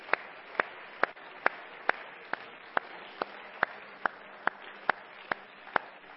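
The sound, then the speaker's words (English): A church audience claps hands unto the Lord in a steady unified rhythm, about fifteen sharp claps roughly every half second, moderately loud over a faint background hum with no voices. “Let's clap our hands together unto the Lord.”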